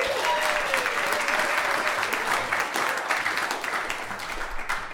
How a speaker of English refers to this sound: While he's getting ready, big round of applause for our musical guest and closing us off for the evening